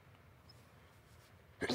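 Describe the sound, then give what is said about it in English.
A single sudden, loud sneeze bursts out after a stretch of near-silence, cutting off abruptly at the end. “I'm about to sneeze.”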